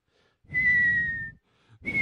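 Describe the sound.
A voice imitates a whistling stuffy nose: a thin, steady high whistle over breathy air for almost a second, then a brief pause before a second whistle begins.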